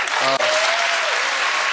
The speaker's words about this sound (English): Wow. That immediate applause is scary. Yes. Yeah. Like immediate. You hear the crowd. Yeah. The immediate applause is just frightening, but not really frightening. It's just they probably hand selected who's in there, you know?